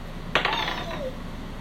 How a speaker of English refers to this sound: Roll initiative with these. With nice dice.